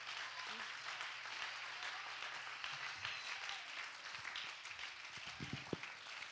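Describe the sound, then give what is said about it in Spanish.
A church audience breaks into sustained, steady applause given to God, a dense wash of many hands clapping that holds at an even level for several seconds, with a few low murmurs underneath. “Le podemos dar un fuerte aplauso a nuestro Dios. We can give a hand clap unto God.”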